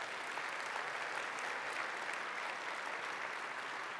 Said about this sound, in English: Come on, give the Lord a clap of praise.